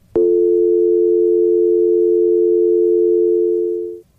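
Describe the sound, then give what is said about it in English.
A landline telephone dial tone hums steadily and loudly for about four seconds, starting with a sharp click and then cutting off abruptly, with no voices present. “Yeah, it's just a dial tone.”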